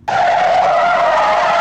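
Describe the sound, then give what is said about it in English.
The tires of a massive metal-plated van skid and screech as it halts after ripping through a cornfield, in one loud, unbroken squeal that starts abruptly and holds a steady high pitch for over a second and a half, with no voices. “It screeches to a halt, and a wild-haired older boy, Fisher Welsh, the Rainbow Chaser, steps out.”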